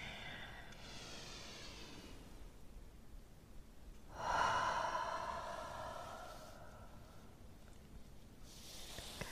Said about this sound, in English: We're going to begin with some deep breaths in and out, and then loud release. One more time.